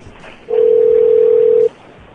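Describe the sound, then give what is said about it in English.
A single steady electronic ringing tone of a call to a cell phone number sounds for just over a second, a clean mid-pitched hum that starts and stops abruptly over quiet line hiss. “Oh, I hear it ringing.”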